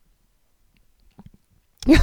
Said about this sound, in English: I just like gulped really hard. I don't know if you can hear that. But it sounded awful to me.